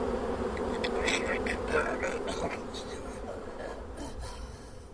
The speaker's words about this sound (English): I mean, come on, why stand so close to that many bees?